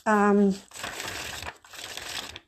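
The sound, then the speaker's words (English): A short hummed voice, then two crisp bursts of paper rustling as the pages of a paper book are flipped through quickly, each lasting under a second with a brief pause between them. “I'm going through, I have a paper book here, and those were pages that I was flipping through.”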